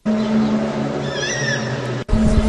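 bird call

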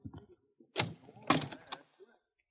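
closet door being opened

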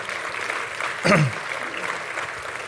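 audience applause

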